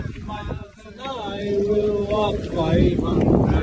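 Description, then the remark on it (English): A group of men rowing a boat on a record attempt sing together loudly and a bit raggedly outdoors, their voices blending over steady wind rumble and faint water noise from the boat. “And the guys are in great spirits on the boat, having a bit of a sing-along, as you can hear here.”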